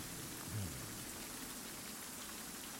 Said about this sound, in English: As the rest of you, I believe, are just sort of hearing just the sounds of the storm and your own breathing, not able to make out really anything else.